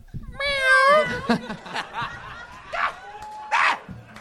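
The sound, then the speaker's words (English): A single drawn-out cat meow sound effect rings out loud, its pitch wavering, played to signal that a performer's 60 seconds of stage time are up, followed by scattered chuckles and brief murmuring voices. “When that 60 seconds is up, you'll hear the sound of a kitty.”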